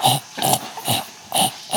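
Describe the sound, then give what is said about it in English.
A dog makes a quick run of five short, grunting vocal noises in a steady rhythm, fairly loud, with no talking over them. “And then we'll put the dog on the podcast.”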